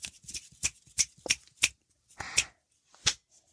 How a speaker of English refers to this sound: That was, should have been 7 snaps, a clap, and a snap, and a point.